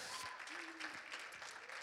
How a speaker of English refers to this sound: Can we give them just a great big hand clap today?